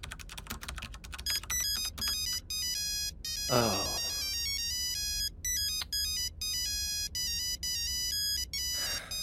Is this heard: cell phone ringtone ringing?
yes